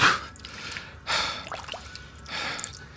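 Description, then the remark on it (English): A person splashes water on their face in three separate bursts about a second apart, with wet dripping and sharp breathy gasps between them. Nobody speaks. “I'm gonna splash water on my face again.”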